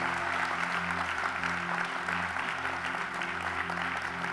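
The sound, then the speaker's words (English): A church audience claps for the Lord in sustained, dense applause, celebrating a wife now being cancer-free after a cancerous kidney was removed. The clapping stays steady and loud for the full few seconds, with a low sustained hum of music or organ tones underneath and no voices standing out. “Come on, can we give the Lord a mighty hand clap for that?”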